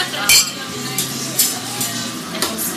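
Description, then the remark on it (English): Glasses clink together in a toast, with about five short, bright taps spaced irregularly over a few seconds, against a soft background hum. “And remember, kids, no matter what you think about the current state of politics here in D.C., whether you think the glass is half empty or half full, there's plenty of room to fill your drink. Cheers.”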